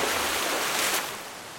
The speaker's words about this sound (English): Then there was a massive splash.